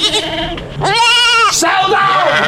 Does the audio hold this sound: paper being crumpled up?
no